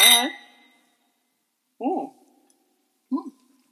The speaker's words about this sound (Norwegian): Vi må ta en liten velkomstskål